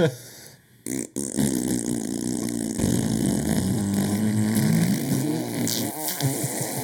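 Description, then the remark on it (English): A long, buzzy mouth fart blown into a microphone as a vocal imitation of the THX cinematic drone, its rumbling pitch wavering and sliding upward for several seconds, loud. “Yeah, I'm trying to replicate the THX sound with farts.”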